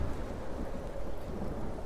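A thunderstorm rumbles steadily, deep thunder rolling beneath a constant wash of heavy rain, dense, with no voices present.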